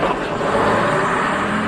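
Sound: bus engine pulling away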